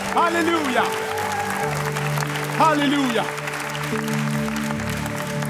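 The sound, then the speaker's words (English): A standing audience claps for Jesus in a dense, steady wash of applause while a voice calls out loudly twice over it, with sustained musical tones holding underneath throughout. “Can we clap for him right now?”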